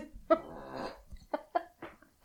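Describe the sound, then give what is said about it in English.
A dog snores while sitting in a chair: a long, rumbling snort followed by several short, irregular snuffling bursts, with no talking over it. “Okay, I think that's our sign that it's time to end the episode because our dog is snoring and slightly falling out of the chair.”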